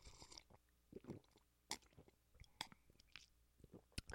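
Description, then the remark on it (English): Quiet, wet chewing of gum: soft smacks and sticky clicks in an irregular rhythm, with occasional sharper snaps and no talking. “That was like a chew. Yes, yeah, I'm chewing on some gum.”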